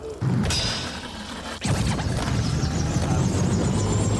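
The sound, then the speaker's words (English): A video-game helicopter starts up: a couple of sharp mechanical bangs, then a steady rhythmic rotor chop with a warbling turbine whine climbing in pitch, loud, with no talking. “do you remember where you were when the helicopter started and Tony Hawk Pro Skater 2?”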